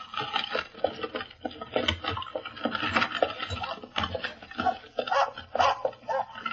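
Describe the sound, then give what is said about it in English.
A dog, Pip, snarls and barks in repeated rough bursts from inside a carriage while trying to bite a woman, agitated, with brief gaps between outbursts and no one speaking. “By Jove, he's snarling. He's trying to bite the woman. Get that confounded dog out of here!”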